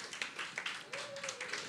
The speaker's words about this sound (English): Round of applause, team number 9.